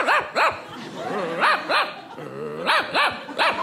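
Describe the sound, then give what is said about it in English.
A person sitting at a gate with a book held up to their face imitates a dog, giving a rapid series of about eight loud yapping barks in quick bursts with short pauses, some with a slight growly undertone. “I love to read, contrary to popular belief, and I keep it up to my face, and I bark like a dog, and then I look around like I don't know where the noise came from.”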